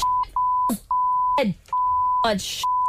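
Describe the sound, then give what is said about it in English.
A near-continuous string of high censor bleeps covers someone's cursing and swearing, the steady tone broken only by short gaps where loud, shouted vocal bursts break through. “Yeah, I don't think you even got any like bits that weren't beeps there.”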